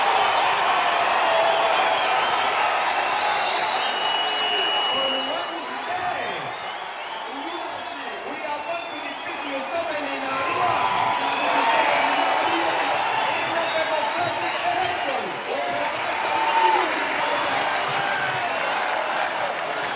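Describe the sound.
A large crowd at an election rally addressed by Bobby Wine cheers and claps in a dense, steady roar that holds for the whole stretch, with many overlapping voices blending together and occasional brief swells, from the documentary Bobby Wine, the People's President.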